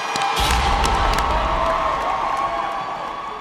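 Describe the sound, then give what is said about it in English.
A large audience cheers and applauds loudly and steadily for the competing teams after their performances on stage, with high whoops and shrieks over dense clapping, easing slightly toward the end. “Listen, let's give each and every one of them a great round of applause right now, right now.”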